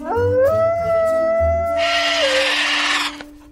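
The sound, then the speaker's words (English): A single drawn-out howl imitated by a voice, rising then holding a steady wavering tone for a couple of seconds before fading, with a hissy rush of noise near the end. “I can bark. And here's howling.”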